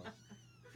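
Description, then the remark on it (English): A short cat meow, drawn out and slightly rising, from a cat climbing on a person's back, with no talking over it, just a soft background hum. “It's a parrot cat.”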